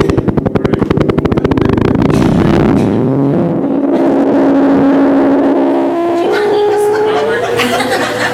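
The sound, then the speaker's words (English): Loud fart sound effects play in a continuous string: a rapid, buzzy sputter first, then drawn-out, wavering flatulent tones that slide up and down in pitch for several seconds. “I mean, I know my sermons are boring, but fart effects, I mean...”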